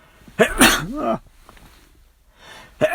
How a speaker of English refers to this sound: The first one was a weird sneeze. The second one was kind of weird too, in a different way.